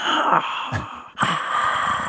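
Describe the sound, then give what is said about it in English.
A voice imitates the strained, choking wheeze of a dog struggling to breathe because its collar was too tight on its neck: two raspy, breathy gasps with a high hissing edge, the second starting abruptly after a brief catch, with no words spoken. “He was struggling to breathe.”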